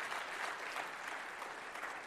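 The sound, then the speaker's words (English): An audience claps steadily as an offering of praise to the Lord, a dense, even wash of applause with no voices standing out, holding a constant loud level for a couple of seconds. “Oh, come on, give a clap offering of praise to the Lord.”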